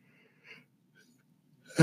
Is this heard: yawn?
yes